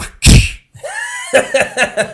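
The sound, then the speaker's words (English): An electronic Indiana Jones toy whip gives one loud, harsh crack, followed by a bending synthetic whoosh tone and then the opening notes of its tinny, rhythmic electronic theme tune. “I'm doing that because the whip that I have, the Indiana Jones whip, it makes that noise, and then it starts playing the theme.”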